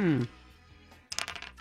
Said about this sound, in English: Mr. Pinkman has dice in hand. Please roll them, please.